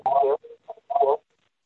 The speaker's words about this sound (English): There's an echo. Do you mind maybe switching off your cell phone? Okay. And other devices around you?